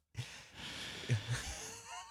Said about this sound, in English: Breathing in, breathing out.